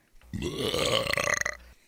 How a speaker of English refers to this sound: I have one here called Carl Burps